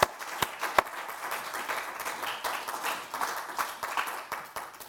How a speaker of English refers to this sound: So please, a little clap for everyone to have done that.